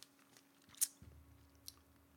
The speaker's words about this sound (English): I took way too big a gulp.